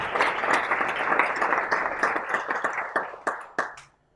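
An audience breaks into applause, a dense wash of many hands clapping that thins toward the end into a few scattered, sharp claps before stopping.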